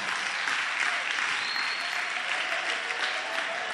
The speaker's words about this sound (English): So let's go. Clap your hands, Jesus.